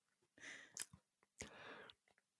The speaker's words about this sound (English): So I'm going to take this first sip to get a live reaction that nobody cares about except for me.